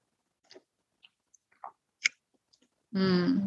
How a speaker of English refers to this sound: And maybe you sniff your tea, you get the other senses involved. And when you're ready, let's partake of a sip together.